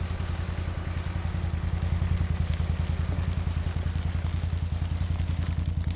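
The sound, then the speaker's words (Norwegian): A test drilling machine runs steadily several hundred metres away near the top of Engebøfjellet, its low engine throbbing in a fast, even pulse, with a soft hiss of wind, rain and sleet over it, thick fog over the fjord, and no voices. “Og vi kan høre at maskinen i gang flere hundre meter unna.”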